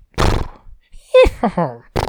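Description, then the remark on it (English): A person imitates a horse's neigh: a short, loud, wavering whinny that slides downward in pitch, framed by brief breathy bursts of voice before and after. “Okay, that's a horse.”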